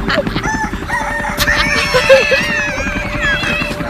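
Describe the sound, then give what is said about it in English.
A rooster crows loudly, its drawn-out, wavering call rising and falling over a busy background of other fowl clucking and general barnyard noise. “Yeah, that rooster thing.”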